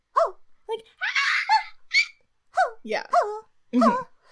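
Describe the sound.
A voice imitates a squeaky, pained scream like a stepped-on kitten, in a string of short, high-pitched yelps and breathy squeaks, fairly loud, spread over about four seconds.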